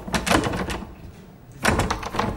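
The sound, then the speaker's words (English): Clattery rattling of a doorknob being jiggled, in two bursts separated by a short pause, with no talking. “Sorry, how does this doorknob work?”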